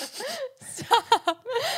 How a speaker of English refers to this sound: You good, bro? You good? Sniff away.